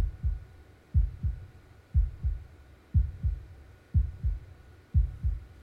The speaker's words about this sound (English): Can you hear God's heartbeat?